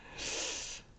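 A single sharp sniff, a short breathy rush of air lasting over half a second, loud with no talking around it, made while leaning in to hear the news.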